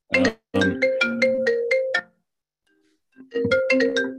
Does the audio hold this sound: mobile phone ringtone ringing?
yes